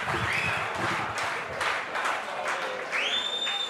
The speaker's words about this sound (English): And big round of applause for Micro and Molly. Absolute legends.